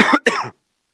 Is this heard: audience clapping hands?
no